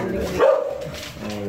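A dog gives a single sharp, loud bark near the middle, with a continuous low hum or voice-like murmur running underneath before and after.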